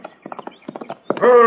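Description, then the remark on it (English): A horse that has been ridden hard gallops up with its rider, its hooves clip-clopping in a quick, steady rhythm, then a loud, drawn-out whinny rings out at the end. “Here he comes now. Yeah, looks like he's been riding pretty hard.”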